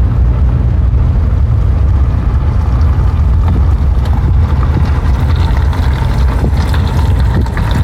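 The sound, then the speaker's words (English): A car still running on its studded winter tires, not yet changed, sounding like it has nails in its tires: a loud, steady rumble of road and engine noise with a gritty, crackling hiss and faint ticking layered on top, continuing throughout without talking. “Boy, that guy's tires do not sound good.”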